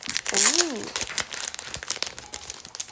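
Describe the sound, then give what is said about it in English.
Wrapping of trading card packages being opened: steady, busy crinkling and crackling of plastic that runs the whole time, with a brief wavering vocal sound near the start. “Here, I'll take out the package for you. Oh, there's a bunch of different packages.”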